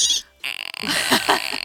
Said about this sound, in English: I'm gonna burp up lemonade bubbles. Yeah, girl, do it. There was some blueberry waffle in there.